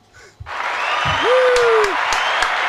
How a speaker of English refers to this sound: Oh, you got to hit the claps.